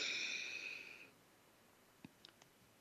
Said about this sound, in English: And to do so, it's really important to choose to be fully present, not just kind of half listening while you're doing other things, but fully present, taking a deep breath.